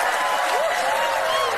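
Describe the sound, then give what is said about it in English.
A studio audience claps steadily throughout, a dense, even wash of applause with a few voices rising faintly through it, filling the whole short stretch at a constant level. “Yes, the clapping seals.”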